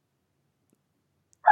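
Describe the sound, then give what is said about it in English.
A single sharp yip from a tiny dog breaks the silence right at the end, short and loud, with nothing else audible before it. “My tiny dog is really excited to talk about the Bucks.”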